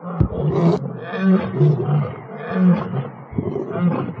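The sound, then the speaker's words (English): Several lions at the Lion Habitat Ranch roar and grunt back and forth in deep, rumbling bursts, loud, one call overlapping the next with no break for the whole stretch. “I could listen to them roaring all day.”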